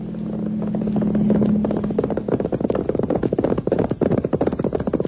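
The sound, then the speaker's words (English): A horse's hooves pound in a fast, steady gallop, loud, after a low sustained droning tone fades out in the opening seconds. No one speaks. “On horseback.”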